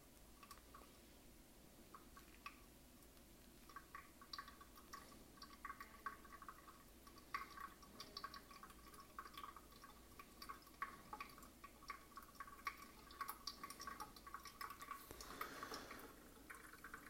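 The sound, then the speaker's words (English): Steady trickling and irregular drips of brewed coffee as water passes through a filter into a vessel, soft, continuing for the whole stretch with no voices. “And at whenever it's gonna slowly drip, I'll wait for the full water to pass through, and then I will pour at around 2 minutes another 100 grams.”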